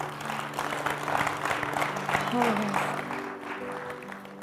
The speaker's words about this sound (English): Isn't God good? Amen. Come on, why don't we just give him a clap of praise?